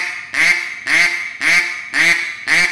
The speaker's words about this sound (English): Oh, flat quack? Yeah, flat quack. Let me hear that. So, flat quack. You don't think that sounds like gray ducks? That sounds like gray ducks, huh?